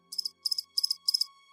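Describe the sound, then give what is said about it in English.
A cell phone lying on a rock rings with a chirping tone: four evenly spaced bursts of rapid, shrill chirps, each made of three quick pulses, over a faint steady hum, with no voices. “The chirping sound got louder and louder.”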